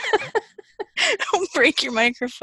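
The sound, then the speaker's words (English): A person lets out a loud, screechy vocal cry with rising pitch, mimicking an eagle's call, with brief speech just before it. “… can feel joy in public because she pretends to be an eagle”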